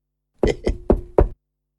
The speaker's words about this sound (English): Stay on the other side of the door. I'll knock from this side.